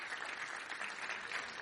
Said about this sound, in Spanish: Felicitamos a los abuelos, llegaron otros más después, si usted llegó después, felicitaciones, un aplauso fuerte a los abuelos.